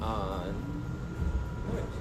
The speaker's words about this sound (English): We did accomplish, and that we are on the subway, so you get to hear all the background noise. It's great.